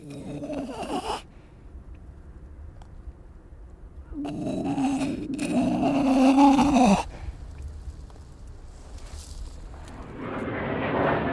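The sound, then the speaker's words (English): Jet fighters roar overhead while training over a wildlife conservation sanctuary in Taiwan, a broad rushing engine noise that fades, returns and swells again near the end, with loud animal-like cries breaking through in the middle. “War over Nature, jet fighters training over wildlife conservation sanctuary, Samuel Monceau, Taiwan.”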